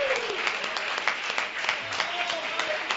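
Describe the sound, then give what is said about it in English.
An audience claps hands together in worship, praising the Lord in a dense, steady burst of applause, the sharp overlapping claps filling the whole stretch at moderate loudness, with faint voices murmuring underneath. “Clap your hands in great victory tonight as you feel the power of the Lord.”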